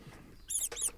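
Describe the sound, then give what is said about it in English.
A rat sound effect: two shrill, high-pitched squeaks in quick succession, each a short chirping burst with a faint scrabbling patter between them. No one speaks. “I said rat. Split decision. Let's play a bit of both.”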